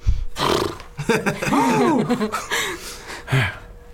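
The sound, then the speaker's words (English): Someone imitates a giant elk's call with a loud, drawn-out bellowing roar that swoops up and down in pitch, ending with a short grunt. “So you pop an elk out. Giant elk comes and lands.”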